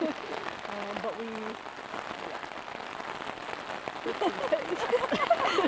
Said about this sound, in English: the rain started falling pretty hard. We're basically deciding if it's raining too heavy to continue at this time. Which is seeming to be leaning towards yes.